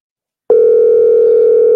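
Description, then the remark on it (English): A steady electronic telephone tone starts abruptly and holds at an even, fairly loud level, an outgoing call to scammers ringing on the line with no one picking up. “And they don't want to answer the phone at all.”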